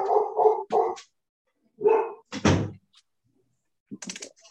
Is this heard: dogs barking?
yes